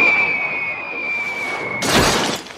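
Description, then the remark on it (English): A thin, steady whistle of a falling studio light, a glass and metal cylinder, gives way to a sudden, loud crash as it smashes onto the street pavement in front of Truman's house, with a brief shattering burst that quickly fades. “A cylinder made of glass and metal crashes to the pavement right in front of Truman's house.”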